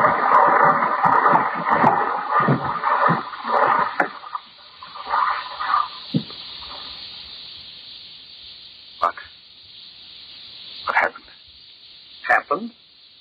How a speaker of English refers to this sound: We just landed at the bottom of the sea, that's all.